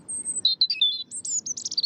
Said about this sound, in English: Kingdom found that European robins in noisier environments tend to sing at night. The finding suggests that these robins experience nighttime as the best time to have their voice heard by potential mates and rivals after the day's hustle and bustle.